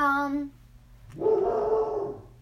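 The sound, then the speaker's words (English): A dog vocalizes, starting with a short tonal whine, then a sharp click and a longer, rough, harsh bark-like sound that holds for about a second. “That dog is so buggy.”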